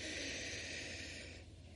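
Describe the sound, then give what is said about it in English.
A steady, airy inhale through the nose lasting over a second, fairly soft, during a guided breathing exercise, with a broad hissing rush that fades slightly near the end. No one speaks. “when you're breathing in, I like to breathe in through my nose”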